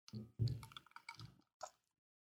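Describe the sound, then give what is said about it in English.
Wet slurping sips of a bourbon mint julep cocktail from a glass, a few short liquid pulls with brief pauses between them, followed by a small swallow-like squish. No one speaks. “Let's take a sip and let me see before I give you the context.”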